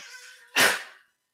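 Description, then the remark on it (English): A sick female puppy, foaming at the mouth and about to throw up, makes a single sharp, rasping hack or gag, a loud breathy burst after a brief thin whine, then silence. “My puppy is like literally like foaming at the mouth right now.”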